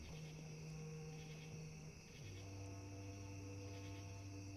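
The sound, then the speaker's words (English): A steady, droning chorus of cicadas buzzes continuously on a summer night at a soft, even level, with a low mechanical hum underneath that shifts pitch midway. No one speaks. “And every summer since we've moved to this house, I still look forward to the sound of falling asleep to the cicadas.”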